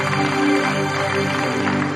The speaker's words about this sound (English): Oh, clap as if you are happy.